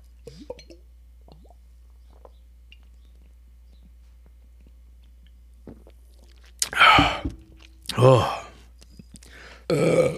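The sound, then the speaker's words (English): Someone takes a drink of Corona beer from a bottle: after a quiet stretch come a few wet gulps and swallows, each followed by a loud, breathy exhale. “I'm drinking a Corona right now, so I'm not being my healthiest self drinking water like normal.”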